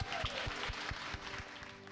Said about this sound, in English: So round of applause for the Millennial Women of Atlanta. Thank you, guys.